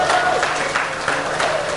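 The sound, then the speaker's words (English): A crowd applauds a couple's 19 and a half years of marriage with a dense wash of clapping. It stays loud throughout, with some cheering and a few voices mixed in. “You know why I'm asking for a little applause.”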